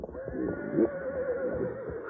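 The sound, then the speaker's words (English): Frightened horses, smelling smoke and seeing a wall of flame creeping toward them, whinny and neigh in a continuous, wavering cry with no talking, filling the short stretch at a steady, moderately loud level. “Meanwhile, the horses, smelling smoke and seeing the wall of flame creeping toward them, began to fuss and fret.”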